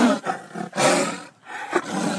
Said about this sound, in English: An alpha male sound. Yeah. Yeah. What would the sound of that be? Tiger roaring, maybe.